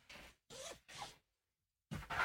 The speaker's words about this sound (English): Oh, I should actually zip this. Oof. So it looks a little better.